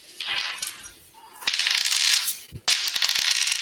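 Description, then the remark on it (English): Dice for a d66 roll rattle and clatter in three bursts, a bright, busy scatter of hard little clicks with brief pauses between, ending in a sharp tumble and settling rattle. “you got into that chair pretty quick and realized, roll a d66 if you don't mind.”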